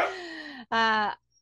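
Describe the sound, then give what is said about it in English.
A dog vocalizes in two drawn-out, groaning moans: a longer one that sinks slightly in pitch, then a brief gap and a shorter, brighter one. Loud and clear, with no one talking. “Yeah, so right now I'm like I say oh, my dog is talking.”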